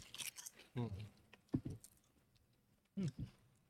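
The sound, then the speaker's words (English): Crisp crunching of salt and vinegar potato chips in a few short bursts, mixed with muffled, wordless vocal sounds between bites. “It smells like, if you didn't know what this chip was, it just smells like a regular Lay's chip, like a classic.”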